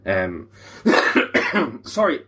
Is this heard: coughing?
yes